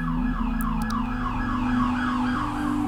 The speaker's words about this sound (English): There goes the siren.